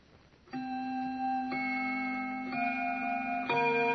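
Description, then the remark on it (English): A grandfather clock in the living room of a baron's home in Paris chimes at 6:45, striking four resonant, bell-like notes about a second apart, each tone ringing on and overlapping the next, fairly loud with no voices. “That I remember because the grandfather's clock in the living room was just beginning to chime.”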